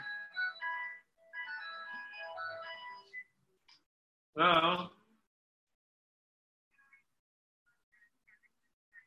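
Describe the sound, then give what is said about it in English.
An American mobile phone's ringtone plays a bright, electronic melody of quick repeating notes for about three seconds, then a short loud burst follows and only faint, scattered sounds remain. “This is my American phone.”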